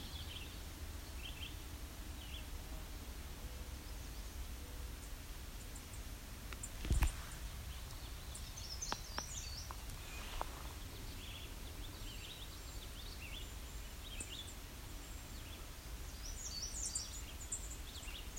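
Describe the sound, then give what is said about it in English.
Faint bird song comes in short bursts of high chirps, each phrase a little different from the last, over a low steady rumble with a couple of soft knocks. “You can hear all that variability. Song changes.”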